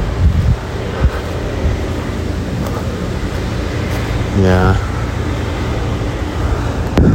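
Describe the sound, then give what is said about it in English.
Steady, cold outdoor wind in August rumbles and buffets across the whole clip in front of the Marriott, with low gusty roar and a brief spoken word near the start. “And it's cold and windy.”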